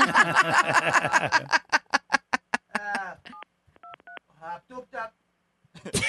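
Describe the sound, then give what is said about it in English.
People talk, then a short run of touch-tone phone dialing beeps sounds clearly in the gap as someone calls 911, a few distinct tones spaced apart, before voices return at the end. “Can we make a phone call, please?”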